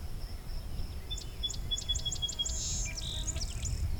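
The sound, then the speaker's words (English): A rose-breasted grosbeak sings a quick run of bright, evenly spaced whistled notes flowing into a short warbled phrase, over a steady low outdoor rumble. “Okay, just picked up rose-breast grosbeak.”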